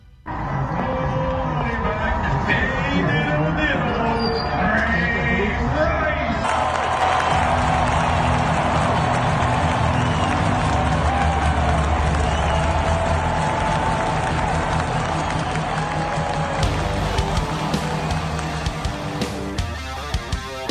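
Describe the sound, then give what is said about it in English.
A loud, dense crowd at a Baltimore Ravens football game roars continuously as the public address announcer announces Ray Rice, with cheering, whoops and scattered clapping blending into a thick wash of noise, recorded on cell phone cameras with a muffled, slightly distorted quality. “Not the clearest audio taken from cell phone cameras at the Baltimore Ravens game over the weekend.”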